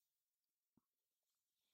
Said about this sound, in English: Let me just take a sip of tea.